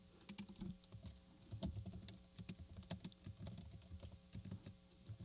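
Rapid, uneven clicking of keys on a computer keyboard, fairly quiet, with irregular bursts of keystrokes and brief pauses, no voices; someone is typing a search for Civil War music.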